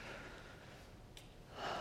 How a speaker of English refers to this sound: Take a deep breath, and when you breathe in, know that you are breathing in the presence and the love of God. Just take a deep breath.